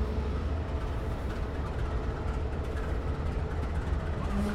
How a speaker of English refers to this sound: These Amtrak diesel locomotives will be running for nearly 48 hours without stopping. We've got numbers 25 and 197 on the front of this train.